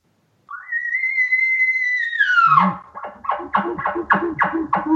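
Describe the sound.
An imitated cow call with chuckles, a calm, non-urgent call for calling cows in an area: a loud, high whistled note held steady, then sliding down into a quick run of six or seven rhythmic, throaty chuckling grunts.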